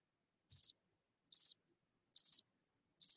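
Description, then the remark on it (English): Four evenly spaced cricket chirps ring out clearly against silence, each a short, high, trilling burst repeating at a steady rhythm. “Crickets.”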